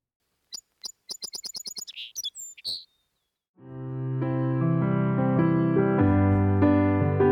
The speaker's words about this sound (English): And so, Little Bird sang.